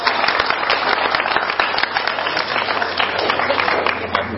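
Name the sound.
audience applause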